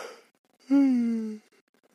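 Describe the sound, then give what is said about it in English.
A single yawn: a soft breathy intake, then a drawn-out voiced groan that slides slightly downward in pitch and stops after about a second. “Let me yawn first.”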